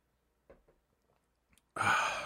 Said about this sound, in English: Give me a second as I take a sip of this.